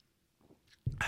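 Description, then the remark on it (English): A sip of beer: faint wet mouth sounds, then a sudden louder slurping gulp at the very end, with no talking. “So let's take another sip of this beer.”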